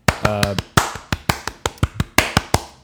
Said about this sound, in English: Hey. So, hand claps. It's fun. Yeah.